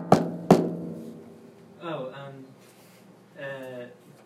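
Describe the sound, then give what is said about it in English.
Two sharp knocks in quick succession, followed by a pause and then two short stretches of a voice. “Okay, knock, knock, knock.”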